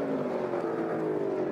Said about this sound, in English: Take a look at this NASCAR race in 2020.